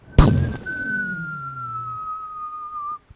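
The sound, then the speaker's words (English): A person whistles a falling-bomb sound: one long, steady tone that slowly slides downward in pitch for nearly three seconds after a brief breathy burst, then cuts off abruptly. “Do all bombs whistle like that? Like if I had a bomb and threw it out your window right now, would it go?”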